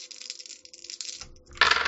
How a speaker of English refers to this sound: Come, stay on the fucking table, dice.